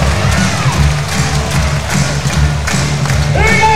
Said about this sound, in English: The crowd's getting into it now. You can hear him lifting. 58-63, back to a five-point game. It is game on here in Adelaide.